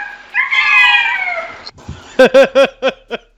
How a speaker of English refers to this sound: play the kitty sound for the Charlo fans. Or Charla fans.